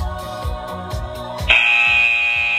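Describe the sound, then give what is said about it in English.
A loud, sustained electronic buzzer signalling the start of the final run in a workout cuts in sharply and holds a steady high tone, sounding over rhythmic background music with a pulsing beat. “Ready for that buzzer?”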